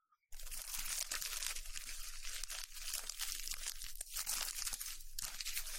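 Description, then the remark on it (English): ASMR crunching and crinkling of an umbrella by a woman, a dense, steady stream of crisp rustling that starts abruptly and continues without pause, with no voices. “So here she is crunching an umbrella.”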